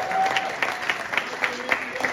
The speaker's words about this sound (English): Let's give them another round of applause.